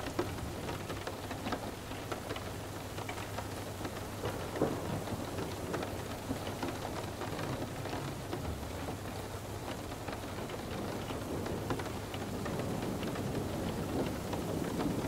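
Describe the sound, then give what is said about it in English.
Steady, dense rainfall pours without a break, with a low thunder rumble rolling underneath. The storm is even in volume throughout, and no one speaks. “Following the raindrops down the tunnel, the sound of the storm above fades off and out.”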